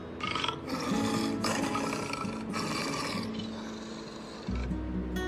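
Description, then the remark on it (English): A tiger roars and growls in a deep, raspy, continuous rumble for several seconds, loud, swelling again in a final heavy snarl. No one speaks. “And he was glad he did, for in the middle of the night, he saw a tiger come prowling below him.”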